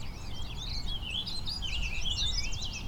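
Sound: warbling vireo song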